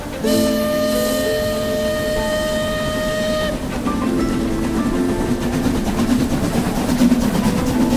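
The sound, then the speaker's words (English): A train horn blares for a few seconds, then gives way to the steady rumble and rhythmic clatter of a train rolling along the rails, loud throughout with no voices. “All aboard! On the ….”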